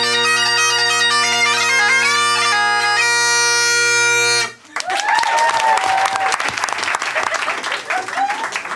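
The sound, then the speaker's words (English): A loud, steady bagpipe drone and melody, played as a demonstration by an expert bagpiper and pipe major, cut off abruptly, then an audience breaks into sustained, dense applause with a few whoops and cheers mixed in. “Applauding that is like tipping for bad table service.”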